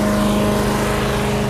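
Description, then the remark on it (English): A lawn mower engine runs steadily as someone mows a lawn in suburban Essendon, a buzzing, droning hum with a firm low-pitched tone that holds at an even loudness throughout, with no voices. “Suburban Essendon, somebody mowing his lawn.”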